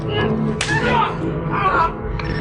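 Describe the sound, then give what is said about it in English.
A single sharp slap cracks out loudly, followed by a voice reacting and murmuring against a low, steady background hum. “Slap you.”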